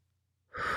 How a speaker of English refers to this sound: Breath in.